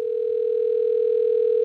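A steady telephone dial tone as a call is placed hums continuously at an even volume, clear, with no voices or other sounds over it.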